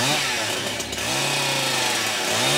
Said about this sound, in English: And then what's the very next scene? Him in a hardware store trying out chainsaws.